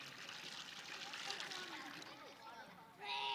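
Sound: water poured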